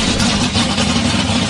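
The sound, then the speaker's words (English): An Audi car engine runs loud with a steady low drone and uneven, rough pulsing, laboring and struggling under strain after water was poured into it, before burning and seizing. “You can hear the engine not liking this.”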